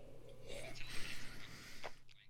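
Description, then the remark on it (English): Someone takes a quiet sip of an energy juice drink: soft slurping and airy breaths over a low steady hum, ending with a brief swallow-like click. No one speaks. “I'm going to have a quick sip of my energy juice.”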